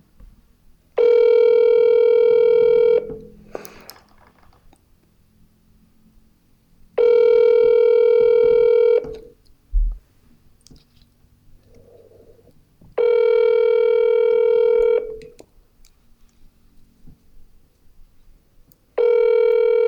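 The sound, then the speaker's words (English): A telephone rings in steady electronic bursts, about two seconds each, repeating every six seconds or so with quiet gaps between. The tone is loud and clear, with no one talking. “I should just make a ringing phone the new theme song”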